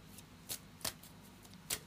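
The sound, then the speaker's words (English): A deck of game cards being shuffled: three quick, soft papery snaps spaced unevenly over a couple of seconds, fairly quiet, with no talking. “Give this a quick shuffle and see. Hopefully it's just one card.”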